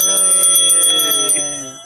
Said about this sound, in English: Same time you hear the bell.